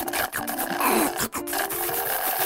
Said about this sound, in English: Amara slurped up her whole entire milkshake.